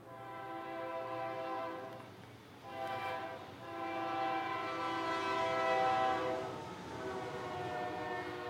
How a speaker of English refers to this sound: I'm going to wait for the train to go by.